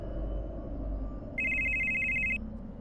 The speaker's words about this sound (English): Every hour the phone rings with a Xomog telemarketer.